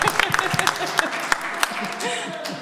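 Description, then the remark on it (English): An audience applauds for the tech guy, a dense patter of sharp, irregular claps over a steady crowd murmur, with voices talking and calling out underneath throughout. “We'll applaud for him later. Or now.”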